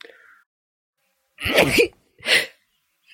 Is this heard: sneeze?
yes